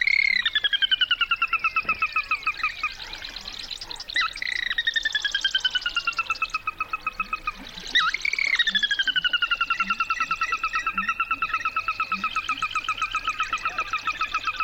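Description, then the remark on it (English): A sora, a small chicken-like marsh rail, gives loud whinny-like, laugh-like calls: three rapid descending runs of squealing notes, one after another, over a faint marsh background with no voices. “The Virginia rail is out there in the marshes, and even more common is a small rail called the sora, which has a fabulous whinny-like outburst, sort of a laugh-like outburst.”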